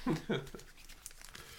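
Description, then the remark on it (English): Paper slips for a draw rustle and crinkle in quick, irregular scrunches as they are mixed, following a couple of short voiced sounds at the start. “I'll mix the paper drop.”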